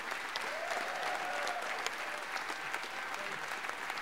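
Sustained applause from a large audience, a dense steady patter of many hands clapping at an even loudness throughout, with faint crowd voices mixed in.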